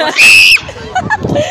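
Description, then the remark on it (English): A loud, shrill human scream held for about half a second near the start, cutting off abruptly before brief talking and laughter follow. “Am I allowed to scream?”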